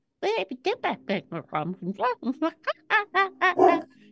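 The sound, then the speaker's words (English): A human voice mimics a dog's barking in a fast run of about fifteen short, yappy barks, fairly loud, with a brief gap in the middle and no other sounds. “And then barking like a dog for some reason.”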